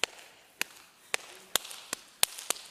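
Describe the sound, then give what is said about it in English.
Sharp, crisp taps imitate footsteps heard in a living room outside a bedroom door, about eight of them in an uneven rhythm that quickens toward the end, each one a brief click over near silence with no voices. “And all of a sudden, we heard footsteps, like right in the living room outside of our bedroom door, like this.”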